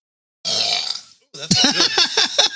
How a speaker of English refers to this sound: holding in burps will not be good for you. You'll have yourself a bad time.